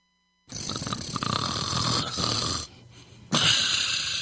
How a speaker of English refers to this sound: Is snoring keeping you or your partner awake?